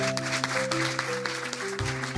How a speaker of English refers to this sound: Thank you very much. Let's give one more round of applause to our instructors and draftees. Wonderful job tonight.